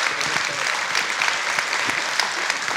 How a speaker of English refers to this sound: Everyone, give them a round of applause, these two.